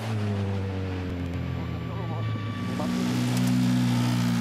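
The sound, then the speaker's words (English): A rally car with its bonnet open is driven flat out on a stage, its engine roaring at high revs, a steady droning whine that dips briefly as gears shift, then climbs and holds loud to the end. “I'd say that's an impressive drive with a bonnet open.”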